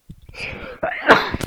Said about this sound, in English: Oh, I might sneeze now. Maybe.